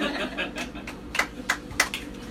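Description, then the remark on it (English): A few scattered handclaps ring out from an audience, sharp bright slaps spaced unevenly over a low murmur of crowd noise, never building into full applause. “I did not expect that to be the applause line, but I will take it.”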